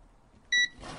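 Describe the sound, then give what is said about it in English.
A small digital multimeter being handled gives one short, high-pitched electronic beep, loud and clean against quiet background hiss, followed by a soft rustling noise. “I'm playing with it as I'm talking. That's what the beeps are.”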